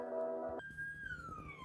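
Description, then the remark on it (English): A fire truck siren wails in the distance: a steady, blaring harmonic tone gives way to a single high pitch that slides slowly downward over a low rumble. “I heard a fire truck singing in the distance.”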